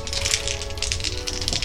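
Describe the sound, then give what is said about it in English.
Three dice are rolled, rattling and clattering continuously for a couple of seconds, a busy, bright tumbling of small hard objects with rapid clicks, steady in loudness, with no one talking. “Okay, so go ahead and roll your 3 dice.”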